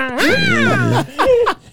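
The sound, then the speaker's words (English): A person loudly imitates a yowling cat, drawing out one long, wavering wail that rises and falls before breaking into two short, strained yowls. “should have just had like a cat around his neck, and he just like hits it occasionally, and it just goes like.”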